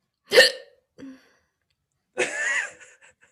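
Sharp hiccups break out with no talking: a loud gulping jolt, a softer catch about half a second later, then a longer, breathier hiccup after a pause.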